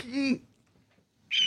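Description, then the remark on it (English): A hawk screech: a short, harsh harmonic cry, then a pause and a second, thinner, high-pitched screech that cuts off abruptly. Both calls are loud, with no talking. “Got a hawk screech.”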